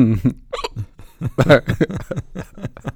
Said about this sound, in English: Trying not to hiccup into the microphone. Testing. Uh-oh. Already failing, man.